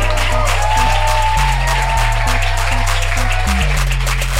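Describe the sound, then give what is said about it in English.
A comedy audience claps and cheers loudly and steadily to welcome comedian Njambi McGrath to the stage, a dense wash of hand claps over a thumping, stepping bass line of upbeat walk-on music, with no voice speaking. “And let's make them really big and go crazy as we welcome to the stage, Njambi McGrath.”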